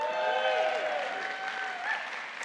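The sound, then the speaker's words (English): An audience at Springs Community Church, before a sermon, claps steadily and loudly for a couple of seconds, with a few high, wavering whoops and cheers rising over the dense patter of hands. “I promise you clap too soon.”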